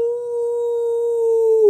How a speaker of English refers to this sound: A third group of warriors charged at Weyra. She reared back and howled.